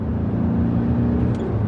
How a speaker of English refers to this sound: It sounds like we're on a highway now, going pretty fast, actually.